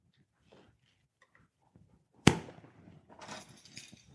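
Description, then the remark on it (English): A bunch of keys, including a church key, a house key and a car key, lands with one sharp, loud clack, then jingles in a second or so of bright, tinkling metallic rattles after quiet faint handling noises. “These are my keys.”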